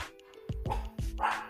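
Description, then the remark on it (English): Dogs bark sharply and loudly several times in quick succession at a bird that just landed on the tree outside, with a brief pause between the first pair and the next bark; no one speaks. “Get them, dogs.”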